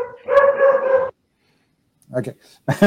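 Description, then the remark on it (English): A voice imitates a wild dog barking inside a cave: one drawn-out, strained bark-like yelp, loud, followed by silence and then a couple of short, rougher vocal bursts. “There's this wild barking noise.”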